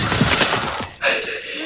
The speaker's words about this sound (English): Yeah, I punch it. You shatter the crystal.